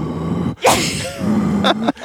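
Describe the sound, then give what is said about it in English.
A person imitates heavy, labored breathing: a sharp, forceful inhale followed by a long, strained exhale with a slight vocal groan, then another quick breath at the end. “Like, me breathing really hard, like...”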